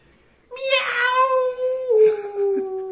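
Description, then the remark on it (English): A person imitates a lone wolf howl with one long, sustained, loud wail lasting a couple of seconds. The pitch holds steady, then dips near the end, sounding somewhat cat-like. “Cat wolf? It's a cat? It's supposed to be lone wolf”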